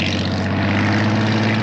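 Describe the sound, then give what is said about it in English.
A vintage wooden Chris Craft motorboat's engine runs at a steady, loud drone, with a deep humming rumble that holds constant throughout and no voices. “So, how fast did this old tub go anyway?”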